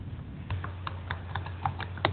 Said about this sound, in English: he was pounding on his keyboard